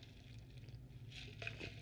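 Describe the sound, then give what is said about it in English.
A faint, brief gulp of water, with a couple of soft wet swallowing sounds toward the end over a steady low hum, and no one speaking. “Let me take a swallow of water.”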